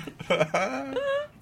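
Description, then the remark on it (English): Several people imitate a dog barking together on a count of three, producing a few loud voiced woofs in quick succession, overlapping slightly and ending in a drawn-out tone. “1, 2, 3. Woof, woof.”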